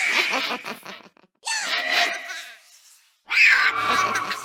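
Three shrill, wavering shrieks from a Vex separated by short silences, each made of several overlapping high, giggling voices with a hissing, breathy edge, like a ghostly video game creature.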